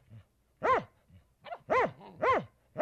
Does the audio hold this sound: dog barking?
yes